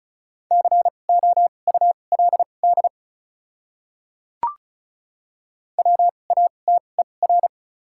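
Rapid Morse code at 35 words per minute with doubled character spacing, sending common English words: a steady mid-pitched tone keyed into quick dots and dashes, in two separate bursts divided by a pause with a single sharp click.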